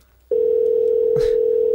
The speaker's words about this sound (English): Oh my god, I am freaking, this is like the ring of death. Like, please, no one pick up. Please, no one pick up. Oh my god, my heart is pounding. Oh my god, I mean, someone answer the damn phone. I just wonder who they're transferring you to.